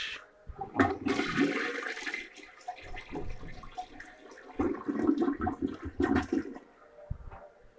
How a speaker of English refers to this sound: Thank goodness the toilet ain't stopped up anymore, or else we wouldn't have that live sound effect.